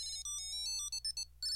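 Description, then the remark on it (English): A Tile lost-item tracker's ringtone plays a quick, bright electronic melody of high, clipped notes that hop up and down in pitch, loud and alone, with no voices over it. “That is the glorious sound of me finding the thing I lost.”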